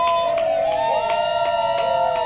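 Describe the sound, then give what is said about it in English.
A loud, steady crowd cheer at a turtle race fills the whole stretch, with sustained whistle-like or horn tones wavering through it and rhythmic bursts, like clapping, repeating several times. “But the louder you cheer, the faster they run.”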